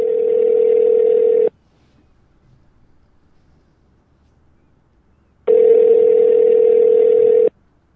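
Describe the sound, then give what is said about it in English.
A phone line ringing on the caller's end as the radio show Blind Living Radio calls a guest: two long, steady electronic tones separated by a few seconds of near silence, fairly loud and clear, with no voices. “Let's get Erica on the phone and see what she can tell us a little bit about what's going on and some of the new things that are happening in rehabilitation.”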